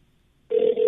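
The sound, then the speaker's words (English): After a moment of silence, the ringback tone of an outgoing phone call to the owner of the restaurant Tavern at the Park starts abruptly, a steady electronic purr, fairly loud, with no voices. “If I can get him on the phone, it will be.”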